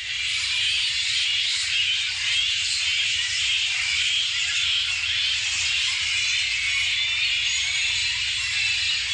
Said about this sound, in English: That's another one of those animals with really an annoying sound. This animal is called a flying fox, but they're not really foxes. These are bats, and they are the biggest bats in the world. They're known as fruit bats.